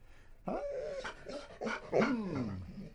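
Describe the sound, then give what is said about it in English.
Mahler, a dog, whimpers and whines in the backyard of radio station KUCI 88.9 FM at the University of California, Irvine, in a series of high, wavering cries, several short yelps sliding into a longer descending whine, moderately loud with no talking over it. “And, as always, the player to be named later, Mahler, the fake news dog.”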